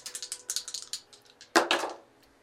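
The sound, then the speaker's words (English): A rapid series of light clicks and clatters of individual dice, including a d100, tumbling across a hard surface, followed by a louder burst of rattling near the end. No voices are heard. “D100. Let's see if we found a lake or an ocean. Individual dice.”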